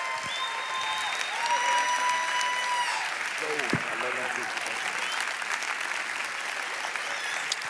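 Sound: audience cheering and clapping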